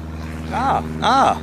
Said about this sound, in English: Excuse the very loud plane overhead.